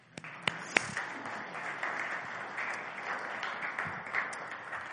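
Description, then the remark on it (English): An audience gives a polite golf clap for several seconds for a married couple invited up to the front, a soft, steady patter of many hands with a few sharper claps standing out near the start, heard without any talking. “Let's give them a little golf clap.”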